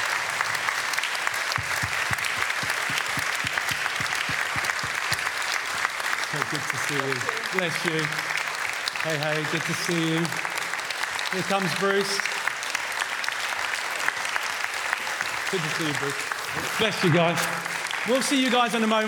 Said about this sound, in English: Let's give these guys a hand. Come on, guys, up you come. Come on, up you come.